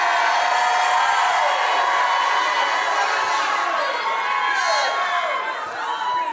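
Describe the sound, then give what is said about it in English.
A large crowd at a sermon shouts and cheers continuously, a loud, dense wash of overlapping voices with whoops and rising yells, sustained without pause throughout. “Somebody start shouting.”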